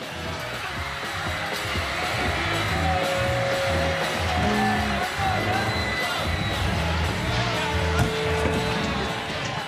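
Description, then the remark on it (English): A 1965 recording of a rioting crowd at a band concert in Ireland: a dense, roaring crowd noise fills the whole clip, a constant wash of many voices shouting and screaming at once with occasional sharper yells, loud and unbroken throughout. “You can hear people literally going crazy, shouting, hitting one another, attacking security services, even trying to storm the stage.”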